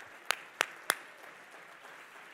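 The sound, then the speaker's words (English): Three sharp, evenly spaced hand claps ring out in quick succession at a church service, followed by a soft, steady wash of crowd clapping and room noise. “Come on, clap your hands.”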